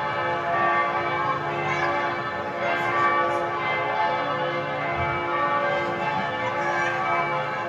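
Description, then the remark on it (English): Church bells in Zermatt in the Alps, heard through a window, ring continuously, a dense wash of overlapping tolls sustained throughout, with no voices present. “We're going to segue to Zermatt now, different part of the Alps, different kind of bells over in Zermatt. Let's have a listen to the ones I heard out the window there.”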